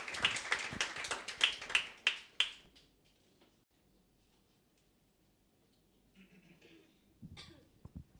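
An audience applauds with a burst of brisk, dense clapping that dies away after about two and a half seconds, leaving near silence broken only by faint shuffles and a few soft knocks.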